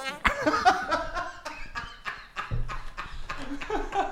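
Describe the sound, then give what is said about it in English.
A run of wet, squelchy underarm farts made with an armpit, coming in quick uneven bursts, with a deeper, longer one near the end. “The underarm farts.”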